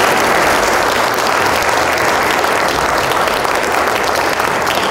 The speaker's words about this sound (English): First of all, thank you very much to our panel. Could we give them a big round of applause?